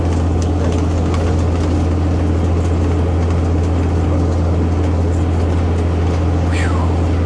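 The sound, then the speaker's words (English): An International cab-over truck engine drones steadily while driving, a loud, continuous low rumble, with a brief high squeal near the end and no talking. “It's probably, like I said, the best truck I've ever driven. It's a good old International cab mover.”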